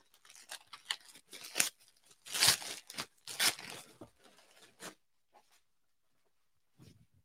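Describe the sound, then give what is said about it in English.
Crinkling and ripping as a plastic packaging bag is torn open, with a run of sharp rustling bursts for several seconds, two especially loud tears midway, then near silence and a faint final rustle. “We got plastic bags for everything in here.”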